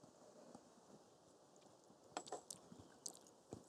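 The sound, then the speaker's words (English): Quiet sipping of bourbon: a few short, wet slurps and lip sounds, clustered toward the end, with faint clicks and no talking. “I'm going in for another sip here.”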